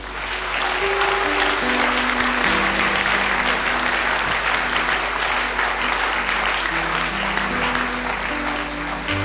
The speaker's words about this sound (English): Why don't we just give everyone a clap?